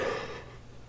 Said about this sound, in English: Excuse me again. I should quit yawning.